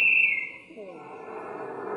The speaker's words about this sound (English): Trailing with only minutes left on the big clock. And then the final whistle blew.